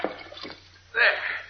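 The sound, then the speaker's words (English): Water sloshes softly, then surges into a loud splash and continues splashing and dripping as a fully clothed man climbs out of the water after jumping in to retrieve a note. “I'll show you as soon as I get out of the water.”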